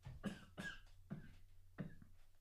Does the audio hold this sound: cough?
yes